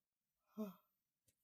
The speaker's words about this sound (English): I'm yawning so much.